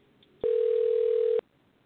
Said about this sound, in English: I hear something. I hear a phone ringing. Do you hear that, y'all?